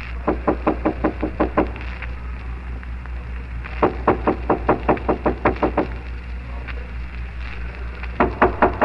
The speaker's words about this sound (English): Miss Dory, there's somebody knocking.